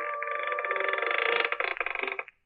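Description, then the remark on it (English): A creaking door sound effect, demonstrated by a sound effects man for mystery programs: one drawn-out, strained groan lasting about two seconds that breaks into rapid rattling pulses toward the end before cutting off. No voices are heard. “Spike, let's have the creaking door.”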